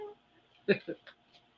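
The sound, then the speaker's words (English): A female puppy shut in a room cries to get out after hearing someone come home, a few short, quiet whimpering yelps, the first the loudest, followed by softer ones trailing off. “She just heard someone come home, so she's crying to get out of the room.”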